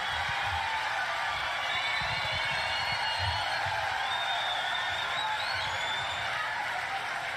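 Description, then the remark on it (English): A crowd cheers and applauds a joke by comedian Jim Brewer in a steady, dense roar that lasts throughout, with high whoops and whistles rising above the clapping noise at a constant loud level. “And that really gets the crowd riled up.”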